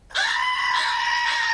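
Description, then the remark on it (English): A single loud, drawn-out bird squawk, used as a buzzer in a quiz game, rings out for about a second and a half, harsh and steady like a buzzer, with no talking over it. “I heard the birds first.”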